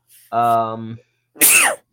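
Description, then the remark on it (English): A single loud sneeze: a drawn-out voiced intake followed after a brief pause by a sharp, hissing burst. “Bless you.”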